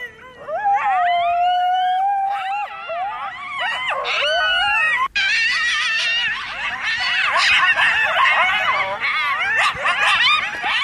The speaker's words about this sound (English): And then you start hearing these noises. And you hear them right outside as well. These were like, these coyotes were right outside the hut.